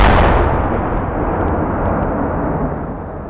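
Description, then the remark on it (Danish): A powerful bomb explosion at Vesterport station in Copenhagen in July 1985 bursts out at once, then a deep, heavy rumble rolls on and slowly fades over a few seconds, with no voices. “Pludselig lød et sønderrivende brag.”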